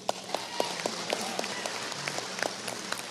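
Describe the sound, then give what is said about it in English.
Scattered applause from an audience at a presentation about the Script Talk pharmacy service, with sharp individual claps popping out over a steady patter of hands, moderately loud and continuous throughout. “I want to hear some claps on this one.”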